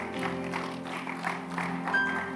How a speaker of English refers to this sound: Clap your hands and rise up on your feet.